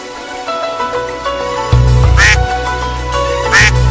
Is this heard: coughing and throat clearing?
no